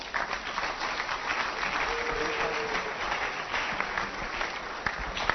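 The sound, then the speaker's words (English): A crowd applauds steadily, a dense, even wash of many hands clapping that holds at a constant loudness throughout, with no voices rising above it. “Can you clap for him?”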